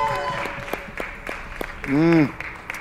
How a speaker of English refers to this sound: Hallelujah. Just lift up a clap offering. Hallelujah.